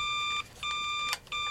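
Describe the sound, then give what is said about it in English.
A phone rings with bright electronic tones in repeated bursts, each tone holding steadily before brief gaps, clear with no voices over it. “Oh! It's the bat phone. The bat phone.”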